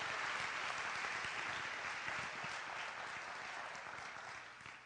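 A church audience claps in praise to God during a Christmas-season morning service: dense, sustained applause with crackling, overlapping handclaps, steady and loud throughout and easing slightly toward the end.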